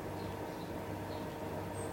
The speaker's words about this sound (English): And apart from the sound of the dishwasher drying things, it feels quite quiet in here.